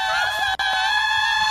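A loud, sustained, high-pitched human scream held steady for a second and a half, with a brief break partway through, and no talking around it.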